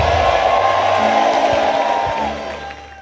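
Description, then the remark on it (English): A crowd erupts in loud shouting and cheering, giving Jesus a big shout, a dense wash of voices with whoops rising above it, holding steady before tapering off toward the end. “Well, give Jesus a big shout wherever you are.”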